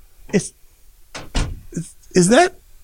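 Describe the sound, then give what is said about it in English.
A door opens as a visitor comes in, with a couple of sharp clunks in the middle, framed by brief bits of voices just before and after. “Somebody's at the door.”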